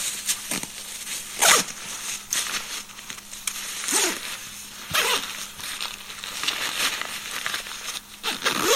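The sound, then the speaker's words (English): The horseshoe zipper on a backpack being pulled closed in several quick, raspy runs with short pauses between, alongside some fabric rustling and handling noise; no one speaks. “And now I'm going to zip up the horseshoe zipper on this pack, and then I'll top load the rest of my product.”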